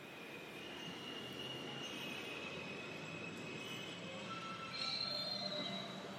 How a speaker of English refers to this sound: We double-bagged my turtles in Whole Foods Finest and hopped on the one train to Lincoln Center around dusk.